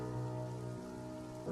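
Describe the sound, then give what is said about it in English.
Steady rain hisses continuously across the whole moment, with a sustained low tonal drone underneath that shifts pitch slightly partway through. No one speaks. “After the hearing, Ryan, fully stressed, returns home in rain.”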